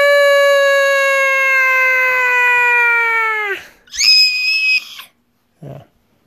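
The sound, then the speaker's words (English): A voice imitating a horrible scream: one long, loud, wavering cry that sags in pitch, followed by a shorter, higher shriek and a brief low grunt. “And suddenly, the family from outside hears a horrible scream.”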